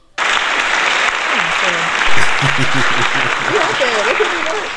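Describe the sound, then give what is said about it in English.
A dense burst of applause and hand clapping starts abruptly and holds steady for several seconds, with voices talking and calling out underneath. “I also want to give hand claps to another city girl who's out here doing it.”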